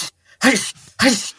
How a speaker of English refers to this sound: Doctor, I can't stop sneezing.